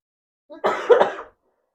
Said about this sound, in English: No, it's a cough, and I don't want to cough because I'm gonna cough right into this mic.